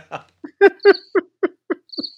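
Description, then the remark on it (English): A cricket chirping sound effect: about eight short, evenly spaced chirps with a thin high whistling tone over some of them, moderately loud and alone with no talking. “Hit the crickets.”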